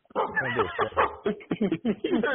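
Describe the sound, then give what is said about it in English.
A dog named Sparky barks and yips in a quick, uneven series of bursts, loud, with short pauses between some of them. “Is that your dog?”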